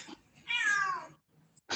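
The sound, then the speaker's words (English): A cat lets out one drawn-out, slightly falling meow, followed by a brief burst of rustling noise at the end; no one speaks. “Same thing here with the cats. You probably heard that.”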